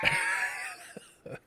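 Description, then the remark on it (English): People screaming in the background of a house: a drawn-out, high-pitched scream holds for most of a second, then two short, faint vocal yelps follow. The whole clip is fairly quiet, with no clear speech. “We're leaving all of this in because they're just screaming”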